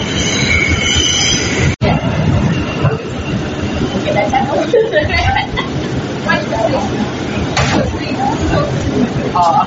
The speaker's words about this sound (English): This is a Brooklyn-bound C local train. The next stop is High Street.